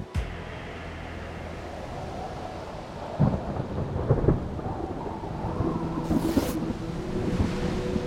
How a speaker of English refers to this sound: He hated storms at sea, and that night's storm was a doozy, marked by claps of thunder, blinding flashes of lightning, and the non-stop deluge of pouring rain.